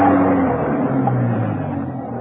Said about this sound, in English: He was nearly at the French windows that led into Whitehead's study when he stopped, froze in his tracks. A car was coming up the driveway. Had Venus Brown returned?